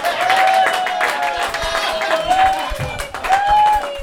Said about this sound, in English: So with that said, I'd like to welcome on today's sponsor. Please give a warm welcoming applause to Riot Fest crew member